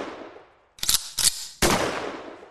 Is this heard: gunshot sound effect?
yes